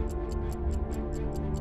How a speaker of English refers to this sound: You know what I hear? I hear the clock ticking. That's what I hear.